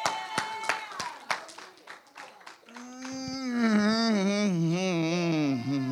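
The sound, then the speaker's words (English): A handful of sharp, uneven claps ring out, then a sustained, wavering voiced cry swells and holds loudly over continued clapping, like an audience breaking into cheers. “I don't know if that makes you want to clap and shout, but that makes me want to clap and shout.”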